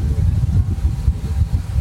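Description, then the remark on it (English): A small passenger boat holding about 10 people drones steadily while the hull moves fast, with deep rumbling, wind buffeting and churning water filling the low end throughout. “This is a much smaller boat than the boat that I came in on from La Pavona.”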